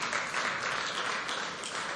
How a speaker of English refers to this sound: Can you clap for her?